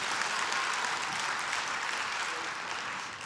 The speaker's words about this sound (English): We have mastered the golf clap in here, haven't we? Thank you.